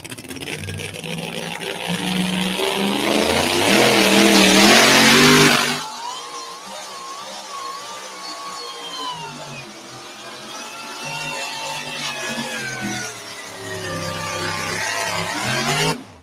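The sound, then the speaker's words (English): A truck engine revs hard and loud for several seconds, then the pitch sags and wavers as it bogs down, continuing to labor unevenly before climbing again near the end. “Something not quite sounding right in that truck. You heard it sounded like it pulled down a little bit.”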